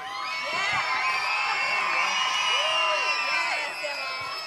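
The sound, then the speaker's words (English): A crowd at an outdoor Christmas carols concert cheers and whoops continuously, with many high children's voices shouting and squealing over one another, loud and sustained for the whole stretch without dropping off. “Kids, make as much noise as you like.”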